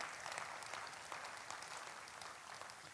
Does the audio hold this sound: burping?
no